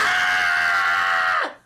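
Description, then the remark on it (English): An adult voice imitates a child's shrill, sustained scream, the one word a child at a party kept yelling, one loud unbroken cry held for over a second before dropping off sharply at the end. “I swear to God, there was one kid, they only said one word the whole night. It was this.”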